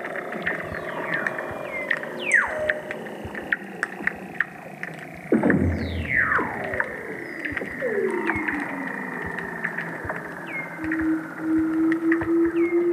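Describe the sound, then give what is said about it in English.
Weddell seals sing beneath the sea ice in eerie descending whistles and long swooping trills, overlapping one another with sharp clicks and chirps against a steady low underwater hum. “You can lie on the sea ice and, if you're lucky, hear the seals singing below.”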